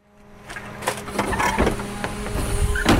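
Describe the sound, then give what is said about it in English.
A garbage truck and its crew work down a tree-lined street in New Orleans on a relatively mild day, its engine droning steadily while hydraulic machinery whines and metal clanks and thumps break in every second or so, growing a little louder throughout. “On a relatively mild day in New Orleans, a garbage truck and its crew made their way down a tree-lined street.”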